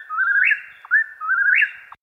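Whippoorwills calling: two repeated three-part whistled phrases, each rising to a sharp emphatic note, loud and clear against silence, with no voices.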